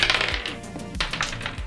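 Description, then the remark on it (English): Twenty-sided dice (d20) clatter and tumble across a hard surface during a tabletop game, a quick burst of sharp clicks and rattles that settle, then another roll follows. Fairly loud, with no voices. “I would like you to roll a d20.”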